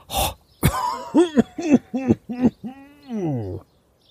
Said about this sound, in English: He breathed in deeply and instantly coughed harshly.